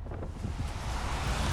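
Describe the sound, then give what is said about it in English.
Blustery wind buffets the microphone with a low rumbling roar, while steady rain hisses across the upper range in a dense, continuous wash, recorded under an umbrella on Michigan Ave. No one speaks. “It's still raining. I'm on Michigan Ave now, pointing my umbrella in the other direction. The wind has changed.”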